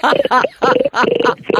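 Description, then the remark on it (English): A person imitates a pig, making four loud oinking grunts in a quick, even rhythm with short pauses between them. “Can you make a pig sound?”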